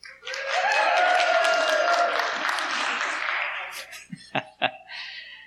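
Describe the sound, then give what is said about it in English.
A crowd at Hope cheers and applauds loudly for several seconds when asked who will be cheering for the Rams, a dense wash of claps and voices with a few whoops, then fades into a couple of scattered sharp claps near the end. “Just curious, how many of you will be cheering for the Rams?”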